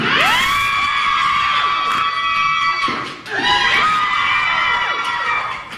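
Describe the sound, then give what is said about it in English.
A loud crowd in Las Vegas cheers and shrieks with excited high-pitched shouts, dipping briefly mid-way before surging again; a single voice calls out a count over the noise, as a woman crushes three watermelons with her thighs in 7.5 seconds for a world record. “What is that cheering? That is a Las Vegas woman crushing 3 watermelons in 7.5 seconds with her thighs, making it a world record.”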